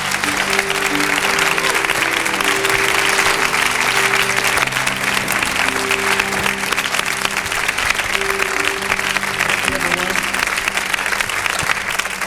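A crowd applauds loudly and steadily for about twelve seconds to welcome speaker Richard Roberts for the afternoon, a dense wash of clapping with sustained low musical notes held beneath it.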